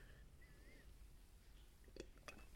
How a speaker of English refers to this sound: Sorry, having a sip of some coffee, world famous coffee.